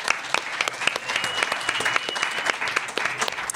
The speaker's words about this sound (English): So let's give a round of applause to Nuestras Raices for all their work.